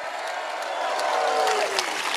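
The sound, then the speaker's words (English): A crowd at a march applauds steadily, a dense wash of clapping that stays loud throughout, with cheers and a drawn-out shout rising above the noise. “Let's hear it for the Fishers.”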